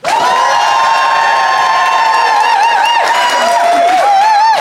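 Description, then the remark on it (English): A Phoenix audience votes by applause, responding with loud, sustained cheering and high whoops over a wash of applause, holding steady for nearly five seconds with wavering pitched shouts toward the end. “is in the right, applaud now.”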